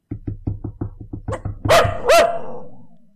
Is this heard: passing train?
no